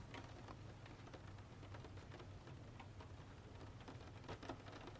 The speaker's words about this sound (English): It feels really good sitting here, being by this window, enjoying the sound of the rain pattering against the window.